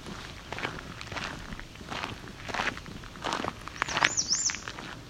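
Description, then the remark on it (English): An American redstart gives one short, high, thin call near the end, heard over steady crunching footsteps on the ground. “So, of course, it's an American red start. Another variant on its call.”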